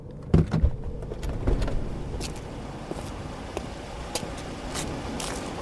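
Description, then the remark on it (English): A car comes to a halt: a couple of sharp clunks and thumps near the start, then a steady low rumble of the vehicle idling, with no voices. “Stop the car!”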